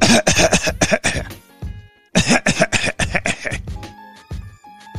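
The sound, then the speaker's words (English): A person's voice imitates the coughing fit of a gym-goer on an elliptical machine, two loud bursts of rapid hacking coughs separated by a short pause, trailing off into softer throaty coughs. “Now, I would say he was coughing, not because he was short of breath.”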